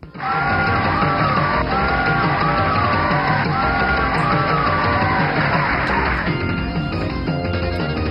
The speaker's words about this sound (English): I like that repeating crowd noise. I do too.